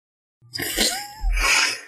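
A single fairly loud sneeze: a breathy, rising intake followed by a sharp, hissing burst of air, with no talking around it.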